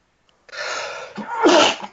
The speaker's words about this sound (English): God bless you, sir.